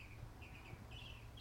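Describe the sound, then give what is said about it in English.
Faint birds chirp in short high-pitched trills, repeating several times over a steady low background hum with no one speaking. “Listen to those birds, everyone.”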